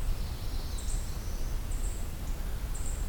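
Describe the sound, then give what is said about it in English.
A black-throated green warbler gives a few thin, high call notes, faint and spaced irregularly, set against a steady low outdoor rumble with no one talking. “So I was right about the sounding like black-throated green.”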